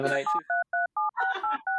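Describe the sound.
A rapid run of about seven telephone keypad dialing tones, clear, steady and evenly spaced, with a burst of voices at the start and talk overlapping the middle tones.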